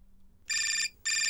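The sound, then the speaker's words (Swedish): A telephone rings in two bright electronic bursts, the second cut short at the end, loud against a quiet, faint hum with no talking. “Yes, det ringer. Det måste vara Malin.”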